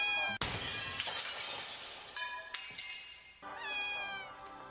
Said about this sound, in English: They're cats. America's most popular pets, but also the pet most likely to die prematurely from disease, poison, animal abuse, and collision with vehicles because many people let their cats roam freely.